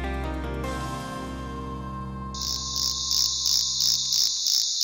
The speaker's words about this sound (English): This cricket-like sound is the call of a tiny pumpkin toadlet from southern Brazil. Now, researchers write in scientific reports that the bright orange frog can't hear its own voice.